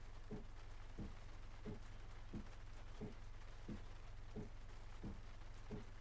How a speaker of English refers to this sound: There you go. That's hopefully that's a little bit of rain for you if you haven't heard that before.